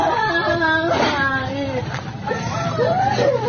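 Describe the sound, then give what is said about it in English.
Several distressed, wavering voices of locals overlap amid the debris after a magnitude 5.6 earthquake in West Java, with high-pitched wails of children crying mixed into an anxious, continuous murmur of adults. “As shocked locals wandered through the debris, the sounds of panicked voices and children crying rang out.”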